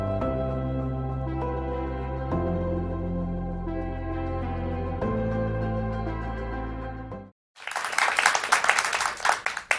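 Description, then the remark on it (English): A faith-filled studio audience bursts into loud, dense applause for the last two seconds, right after sustained music with slow chord changes ends in a brief silence. “Did you hear all that wonderful clapping? That's this faith-filled audience that are here believing with our guest Andrew Wommack,”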